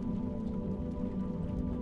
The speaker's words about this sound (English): As a raindrop strokes the window, then another and another.